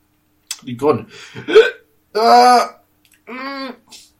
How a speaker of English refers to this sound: No, I had a hiccup when I tried to repress it.